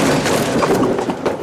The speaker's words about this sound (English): Oh, look. A part of the building the Elder Fuzz knocked through time just zapped in and it's falling right on...